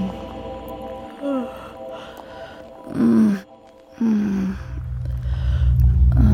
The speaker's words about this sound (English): Hey. Hey, are you alive? Can you hear me? I think she's breathing.